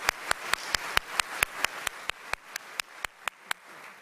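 Applause heard as a steady train of about sixteen sharp, evenly spaced claps, fairly quick, over a faint hiss, with no voices.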